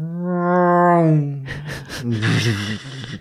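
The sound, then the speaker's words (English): A voice imitates a car engine with a steady, low, buzzing hum lasting over a second, then breaks into breathy bursts and voiced sounds that resemble laughter or talk. “Maybe I'll make a car noise.”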